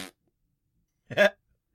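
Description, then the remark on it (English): A short, buzzy mouth raspberry blown to imitate a fart, fairly loud, lasting about a quarter second after a brief pause, with a faint clipped burst at the very start. “Raspberry farts from ….”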